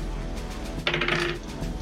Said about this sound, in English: Cop dice. Roll it again.